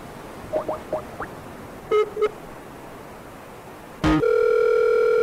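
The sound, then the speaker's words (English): Four quick rising chirps and a pair of short beeps lead to a sharp click, then a loud, steady telephone dial tone hums on without a break until the end, heard while a call is being placed. “You hear that? Yo, phone. Beep, beep.”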